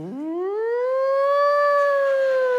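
A single siren wail sweeps upward in pitch and then holds a steady, sustained tone, loud, with no voices or other sounds around it.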